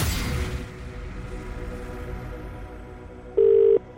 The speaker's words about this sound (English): I'm going to make a call now across the Hits Radio Network. Remember, the phone has to be answered before it has rung five times. Let's do it.